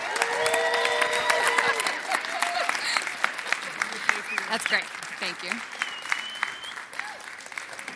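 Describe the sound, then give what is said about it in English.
A large audience at Restore Temecula bursts into sustained, loud applause with scattered whoops and shouts, welcoming a woman before she speaks; steady clapping continues throughout while a woman speaks briefly over it. “So before she even says a word, will you erupt with applause and shouts and love”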